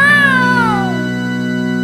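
A single drawn-out, loud cat meow, its pitch sliding downward as it fades, over a steady low hum in the background, as the cat follows people down into the cellar of an old building.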